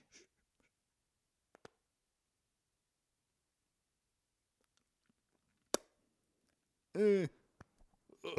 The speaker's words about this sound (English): Oh, that was almost puke. that was a very forced burp.